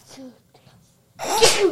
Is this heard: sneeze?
yes